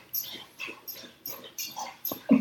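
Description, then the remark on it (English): A dog noisily laps up water, about six wet, splashy slurps in a quick, steady rhythm, with no one talking. “He always drinks water like he's never had it before.”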